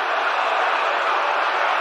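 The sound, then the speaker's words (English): A dense, steady roar from a large stadium crowd cheering a game-winning home run by Chris Morel, a continuous wash of many voices holding at a loud, even level for the whole two seconds, with no single voice standing out. “Can you believe it? Listen to this crowd.”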